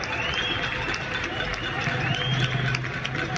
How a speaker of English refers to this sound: each night at 9 p.m, the whole country goes out on their balconies and applauds essential workers, and she recorded a bit of it for us.